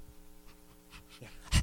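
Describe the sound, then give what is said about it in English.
A person imitates a dog panting with a few quick, breathy huffs that build to one louder, sharper exhale at the end, with no spoken words. “Like a dog pants.”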